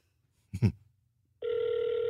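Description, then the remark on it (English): A brief clatter, then a steady electronic ringing tone starts and holds as a phone call to an uncle waits to be answered. It is fairly loud, with no talking. “This is my uncle. Let's see if he'll pick up.”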